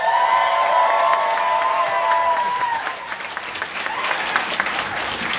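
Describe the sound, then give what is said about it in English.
An audience claps and cheers loudly, voting by applause for Matt Braunger, Power Rangers, with high whoops and whistles over dense, steady applause for a few seconds, then the clapping thins into scattered hand claps. “So, by applause, pick a favorite, starting with Matt Braunger, Power Rangers.”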